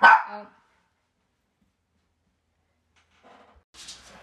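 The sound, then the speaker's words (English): A dog gives one loud bark, followed by a long silence and then a couple of softer barks near the end. “The dogs are calm.”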